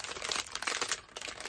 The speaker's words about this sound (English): And I also have this. Where is it? It's back there. I kept this bag. It was very crunchy. Because it's crunchy.